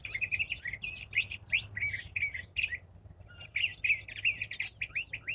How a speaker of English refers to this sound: And trying to figure out what kind of bird that is. That might be the curved-bill thrasher. That might be the spring mating song. It's a little bit different.